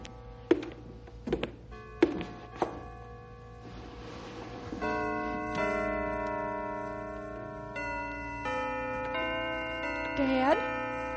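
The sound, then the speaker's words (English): A few sharp knocks are followed by church bells, played by Herman, ringing a slow melody, their tones sustained and overlapping over a low steady hum. “Dad, the bells are playing. Herman's playing the bells for you.”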